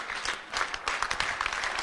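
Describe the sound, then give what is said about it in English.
A crowd at a camp in Zimbabwe applauds steadily, many hands clapping in a dense, continuous patter with brighter individual claps popping through, fairly loud throughout the short burst. “Clap your hands.”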